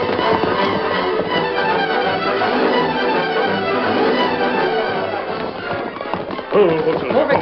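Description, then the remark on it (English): Horses named Silver and Victor, being ridden, gallop steadily with a rapid, continuous drumming of hoofbeats, fairly loud, set against a dense, busy background that swells briefly near the end. “We'll ride up there.”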